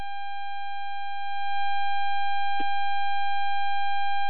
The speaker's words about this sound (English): Uh-oh, sounds like somebody's phone. Uh-oh.